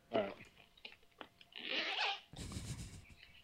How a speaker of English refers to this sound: Did you just zip up your wiener?